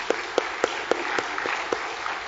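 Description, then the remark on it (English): An audience claps together as a clap offering to God after a prayer: a dense, continuous wash of applause with a steady rhythmic beat of sharper claps, about four per second, and no talking. “Folks, let's give God a clap offering, really.”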